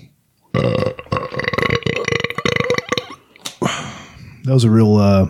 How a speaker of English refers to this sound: That was a real booger burp. A booger burp?